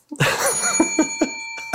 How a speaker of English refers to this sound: I was just going to say, this is like the 7-year anniversary episode with not a single bell in it, but that's the one. Yep, that's the bell. I reached over right before.